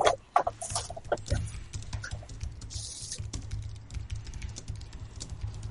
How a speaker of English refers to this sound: I don't know why that requires so much typing.